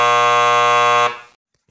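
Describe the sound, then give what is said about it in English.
A loud, harsh game show buzzer blares in one sustained, steady tone for about a second, then cuts off abruptly and fades, leaving silence. “And it's time for Bastards Buzzing In.”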